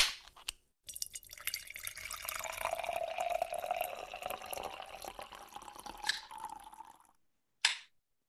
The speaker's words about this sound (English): So you opened two cans now. That's yes, awesome. Two.